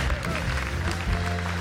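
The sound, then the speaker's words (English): A standing church audience claps steadily and evenly to welcome a pastor to the stage, a dense, sustained wash of applause with a low, held musical drone underneath and no one speaking. “Let's give him a hand. He's awesome.”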